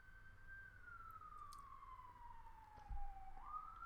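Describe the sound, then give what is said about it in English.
An emergency vehicle siren wails steadily in Baltimore City, a single sustained tone slowly sliding down in pitch before rising again, over a low city rumble with no talking. “So don't see, I'm living in Baltimore City. Y'all hear the sirens.”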